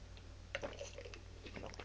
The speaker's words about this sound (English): You got to get a sip of water. So I'm going to reach over and unscrew my bottle cap.